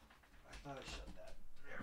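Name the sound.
door being shut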